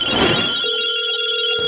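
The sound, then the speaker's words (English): A telephone rings for an incoming call on line one, a bright electronic trill with a steady sustained tone, loud, lasting under two seconds with no voices. “We got some phone calls.”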